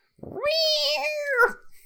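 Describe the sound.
A single long, drawn-out yowl from a stray cat, loud, holding a wavering nasal tone for over a second before dipping at the end. No talking around it.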